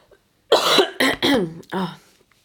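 Four loud coughs in a quick burst, each harsh and chesty, with brief gaps between them and silence on either side.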